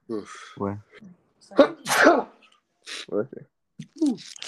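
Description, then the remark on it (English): A sharp sneeze bursts out in the middle of conversation, a loud noisy blast set between stretches of people talking. “Bless you.”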